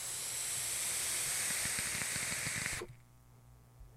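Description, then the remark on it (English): Steady sizzling hiss with dense little pops and crackles from a vape coil firing hard during a high-wattage hit, running for nearly three seconds before cutting off abruptly into quiet. “And the crackle goes up with the wattage.”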